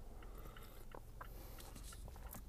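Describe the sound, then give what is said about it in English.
Someone sips coffee: a few short, quiet slurps and wet mouth clicks spaced irregularly over low background hum, with no talking. “I don't know if you guys can, like, hear me sip on my coffee.”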